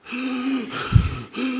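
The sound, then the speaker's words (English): A voice imitates the labored, gasping breaths of a man on oxygen: a strained, voiced pull of air, a rough huffing exhale in the middle, then another strained gasp. “Breathing like this.”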